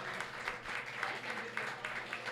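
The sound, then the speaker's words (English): A crowd applauds steadily for hometown hero Jeremiah Davenport, a dense wash of many overlapping hand claps at a fairly even, moderate loudness with no talking over it. “Jeremiah Davenport deserves a round of applause, and I'm going to tell you why.”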